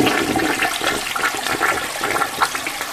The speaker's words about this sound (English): So please stop flushing the toilet, okay? Flush the toilet? No, stop flushing it.